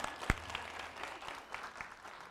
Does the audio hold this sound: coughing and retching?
no